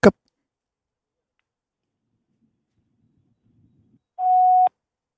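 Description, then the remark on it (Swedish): A single short burst of a steady electronic phone ringback tone sounds loud and clear after a sharp click and a few seconds of near silence with faint low murmuring, from an outgoing call that rings a few times unanswered and goes to voicemail. “Han lät det gå några snull.”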